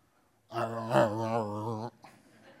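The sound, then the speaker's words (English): A voice imitates a hungry stomach growling with one sustained, low, rumbling vocal groan lasting over a second, fairly loud, then trailing off into a faint breathy sound. “Have you ever been in a meeting and you haven't had breakfast and your stomach starts to growl?”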